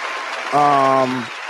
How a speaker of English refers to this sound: Thank you guys. I mean, round of applause to everybody that's been rocking with us for this.